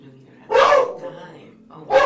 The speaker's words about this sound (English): She's a very big guard dog. She's a small dog, but she's a big guard dog.